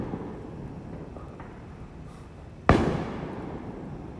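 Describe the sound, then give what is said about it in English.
A single sharp Fourth of July firework bang cracks out of a low, steady outdoor rumble, heard from a backyard, its echo trailing off over the next second. No voices are heard. “So this is what it's going to sound like if we ever have another civil war. But instead of fireworks, these will be real bombs and real bullets.”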